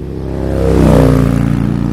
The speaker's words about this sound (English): And that bike? It's loud, clearly modified, right? And Officer Cummings, a cop parked a few hundred feet away from the club, he hears her coming down the street even before he can see her, and she's clearly speeding.